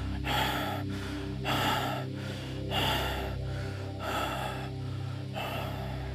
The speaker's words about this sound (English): Now you have reached the top of the mountain. Your breath continues to rasp in rapid gasps.